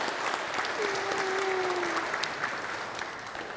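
A room full of people claps steadily in sustained applause, a dense, even wash of hand claps, with a brief faint tone rising briefly above it partway through.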